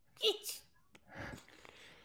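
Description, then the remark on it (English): A short, stifled half sneeze, a sharp clipped burst that cuts off quickly and is followed by a soft breathy exhale, with no words spoken. “You can like half sneeze almost.”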